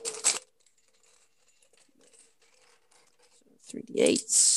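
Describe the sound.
Small hard dice clatter and click as they are picked up and rolled, a sharp rattle at the start, faint light taps after, then a louder clatter at the end as a voice talks over it.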